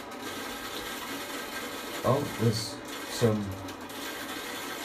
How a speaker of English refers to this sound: some water pipe action there. There we go. Not me, someone else in the house, somewhere else.